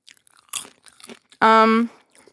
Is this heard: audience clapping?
no